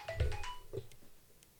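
A brief phone ringtone plays a few quick electronic tones in the first half-second, fairly quiet, then fades into soft background noise.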